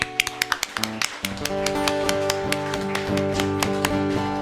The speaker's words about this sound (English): And everybody with grateful hearts, give the Lord a clap of praise.